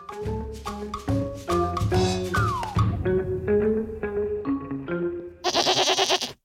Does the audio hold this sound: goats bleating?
yes